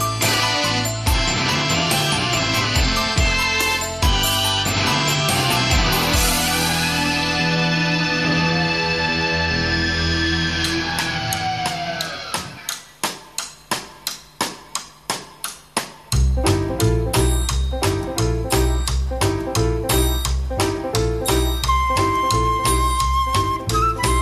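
Layered instrumental music with sustained tones and a steady rhythmic pulse plays loud and alone, thinning to sparse staccato hits midway before the full arrangement returns.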